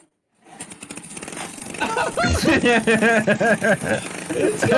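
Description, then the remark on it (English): A small car with a lawnmower engine is started in Russia, sputtering to life and revving with a rattly, lawnmower-like drone, fairly loud, while voices talk over it. “It's got the lawnmower engine in it, yeah, it does.”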